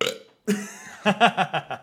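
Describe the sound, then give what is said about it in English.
A loud, croaking burp: a short rasp, a brief pause, then a long gravelly belch that breaks into four or five throaty pulses before cutting off. “I croaked.”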